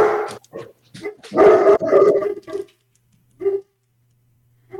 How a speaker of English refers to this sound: And there's dogs. Some dogs somewhere in the city. The ice dogs of Lithios. I don't know what they're barking at now because it's dark out.